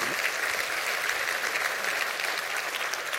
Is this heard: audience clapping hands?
yes